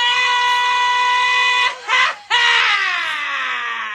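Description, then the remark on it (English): A loud, piercing scream sound effect called Mr. Scream, played from a soundboard: one long sustained shriek, a brief gasping break, then a second scream that slowly sinks in pitch as it fades. No one talks over it. “Give me Mr. Scream again.”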